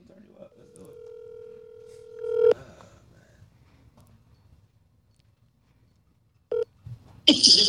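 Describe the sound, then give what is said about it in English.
A steady telephone tone holds for about two seconds, then cuts off with a click as a call is placed, followed after a quiet pause by a few brief, sharp bursts on the line. “This person would call you.”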